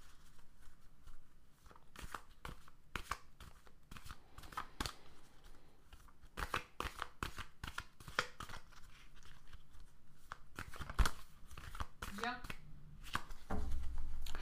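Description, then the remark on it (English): Playing cards being shuffled in a standard shuffle, a run of quick papery riffles and flicks repeating in bursts, with a low rustle toward the end. “I'm going to shuffle them just sort of standard here.”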